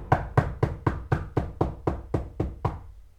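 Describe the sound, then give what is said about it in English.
Eleven sharp, evenly spaced, loud knocks on the wooden front door of a house, rapping steadily for about three seconds with no voices, on a very hot, sunny day in 1938. “I heard a loud knocking on my door.”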